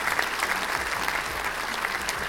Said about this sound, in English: Round of applause.